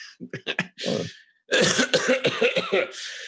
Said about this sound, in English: That actually made me really cough.